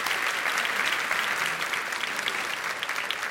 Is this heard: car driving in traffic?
no